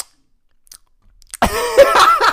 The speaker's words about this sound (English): It is. Look at that. Me clearing my throat. That's disgusting.